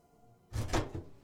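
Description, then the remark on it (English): A door opens with a short, fairly loud burst of creaking and scraping, ending in a couple of low thumps, heard alone. “The door opened, and both Mark and I jumped.”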